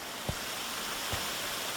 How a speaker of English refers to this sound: It's dry, but there's water everywhere, including this gorgeous stream of faded aqua and brown stone.